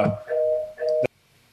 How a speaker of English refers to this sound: I heard your phone there.